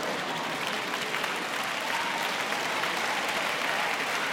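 An audience claps steadily throughout, a dense, even wash of many hands with no voices standing out, holding a constant loud level from start to finish.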